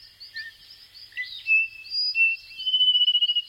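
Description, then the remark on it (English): A dense night chorus of thousands of small frogs in the lush rainforest of Les Pitons du Corbet, the volcanic mountains of northern Martinique, giving high, thin whistling chirps that overlap continuously, ending in a rapid pulsed trill; no voices, steady. “In Les Pitons du Corbet, the volcanic mountains in northern Martinique, thousands of small frogs emerge from the lush rainforest as night falls.”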